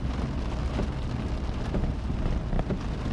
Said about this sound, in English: It's like, let's all relax in the rain, me driving. This is stressful. Listen to the relaxing sounds of the rain hitting the earth. This road's so bumpy!